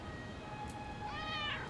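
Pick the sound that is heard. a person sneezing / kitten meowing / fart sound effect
kitten meowing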